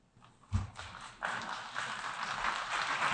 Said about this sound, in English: So that's Trump speaking at the United Nations less than a month ago. Notice the less than enthusiastic applause. Right, the scattering of awkward applause.